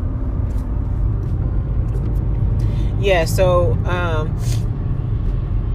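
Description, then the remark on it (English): Steady low road rumble fills the inside of a moving car, constant throughout, while a person speaks briefly over it partway through. “It just got really hot in this car.”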